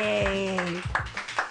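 audience clapping hands

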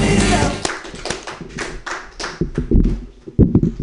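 audience clapping

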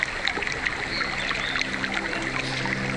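river water flowing

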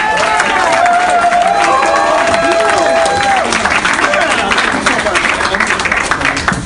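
audience applause and cheering

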